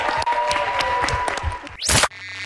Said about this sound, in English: And we're going to have one more cheer from this audience for your president, Tony Hayes.